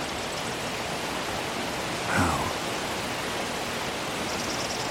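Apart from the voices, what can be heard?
rushing waterfall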